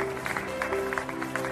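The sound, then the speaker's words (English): A crowd claps and cheers for pandemic front-line workers such as doctors, nurses, EMTs and janitors, in a steady, dense patter of overlapping hand claps with a constant hum underneath, moderately loud throughout the short stretch. “They're cheering for those on the front lines of the pandemic, doctors, the nurses, the EMTs, the janitors.”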